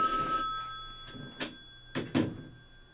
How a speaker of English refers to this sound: oh, a phone. We're getting a phone call. Pick it up and hang it up immediately.